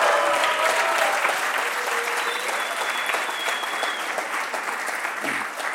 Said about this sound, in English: Just keep going. Just keep going, guys. Just keep clapping. Just keep clapping.